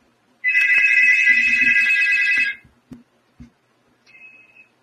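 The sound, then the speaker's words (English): A loud, continuous electronic phone ringtone from an incoming phone call sounds for about two seconds, then cuts off, followed by a few soft thumps and a faint short tone at the end. “They've had, got me a phone call. I'll get the phone right quick.”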